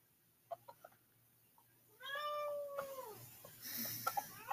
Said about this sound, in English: I swear the cat said no. I'm sorry. I heard the cat say no.